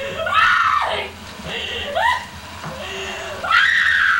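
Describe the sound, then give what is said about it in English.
Actress Heather Donahue screams repeatedly in a horror film clip, in high, strained bursts, three rising shrieks separated by short gasping breaths, loud with a faint background rumble. “Being a scream queen is a big part of being a horror film icon.”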